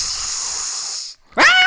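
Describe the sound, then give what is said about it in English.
The Bride in a Frankenstein film, played by Elsa Lanchester, gives a loud, breathy hiss that holds steady for about a second, then after a brief silence lets out a sharp, rising shriek with a strained, tonal edge. “All she does is scream and hiss.”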